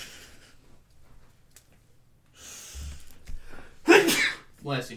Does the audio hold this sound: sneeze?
yes